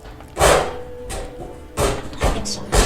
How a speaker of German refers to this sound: Hey, hört euch das an. Der tritt gegen das Auto.